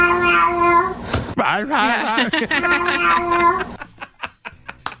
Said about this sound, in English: My cat's been doing that too lately, where she just, like, cries. Aww. For, like, hours at night, and I don't know why.